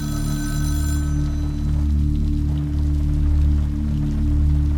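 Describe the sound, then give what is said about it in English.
A shrill payphone bell rings in a phone booth with shattered glass and cracked plastic for about a second, then cuts off, leaving a loud, steady low hum with a faint pattering, rain-like texture. “The sound of the payphone clanging, that shrill, agonizing ring.”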